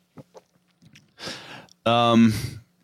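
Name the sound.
chewing a jelly bean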